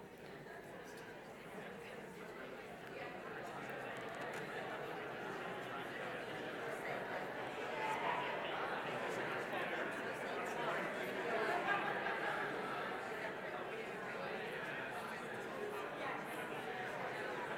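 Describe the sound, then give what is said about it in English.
A steady hum of many overlapping conversations as audience members chat in pairs with the person next to them about what builds resilience, a dense, continuous babble with no single voice standing out, holding at an even level throughout. “But you just turn to the person next to you, just have a quick chat.”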